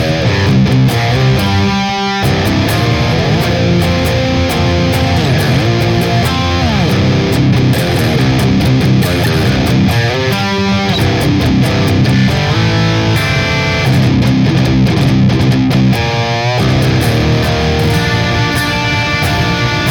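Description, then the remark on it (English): Heavy distorted electric guitar played through a Boss IR-200 amp simulator chugs through a thick, saturated riff, loud and steady for the whole stretch, with a few brief gaps between phrases. No voices are heard. “So, nice and thick, saturated tones, lots of good chuggy action. But check it out. Here's our Boss IR200.”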